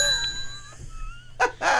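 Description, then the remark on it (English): A bright bell dings once and its clear tone rings out, slowly fading, followed near the end by two short, rough bursts of noise. No one speaks. “That's the Jew bell.”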